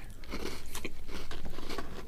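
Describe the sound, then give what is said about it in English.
Crunching of a Penguin biscuit, a cocoa biscuit with rich chocolate cream, being bitten and chewed: a steady run of crackly, grainy crunches over about two seconds with no talking. “Definitely got a good crunch to it.”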